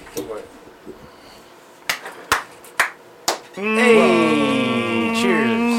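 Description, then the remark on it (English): Four sharp hand claps for audio sync ring out in quick succession over quiet room tone, followed right away by a voice starting to talk. “Clapping for sync, and then we're gravy.”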